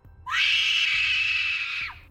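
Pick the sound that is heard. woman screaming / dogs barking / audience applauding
woman screaming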